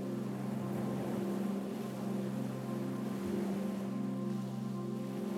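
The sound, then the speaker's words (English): A steady, continuous wash of ocean surf rolls on without pause at a moderate level, with a low droning hum underneath and no voices. “Now, look up and all you see is more sand in front of you, but you can hear the ocean.”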